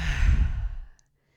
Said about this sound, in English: Take another deep breath in. Exhale out.